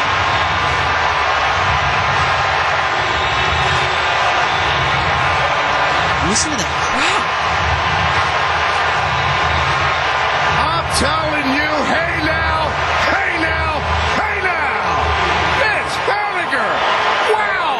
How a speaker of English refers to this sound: I mean, that is a baseball crowd. You can just tell sometimes when a crowd reaction is different. That is 50,000 people losing their ever-living minds at like 10 o'clock on a Saturday night going, oh my God, we still have a chance.